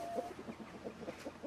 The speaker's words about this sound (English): As we make our way into the massive show hall, nothing can prepare you for the collective sound of ducks, turkeys, geese and chickens, all talking away to each other.